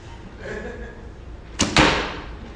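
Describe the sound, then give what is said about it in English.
A quick swish followed by a sharp, solid thwack as an arrow strikes its target, the impact fairly loud over faint background ambience. “Have you ever split an arrow with an arrow? I have, yeah.”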